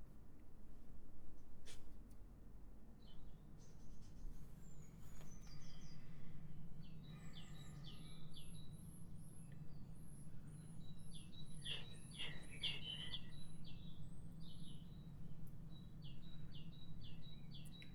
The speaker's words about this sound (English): Remember it? You wake up in the morning and all you heard was the birds. No traffic, no aeroplanes.